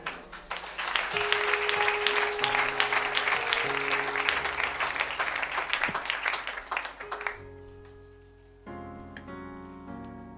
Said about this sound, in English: How many are blessed? Just a round of applause for the word of God. Amen.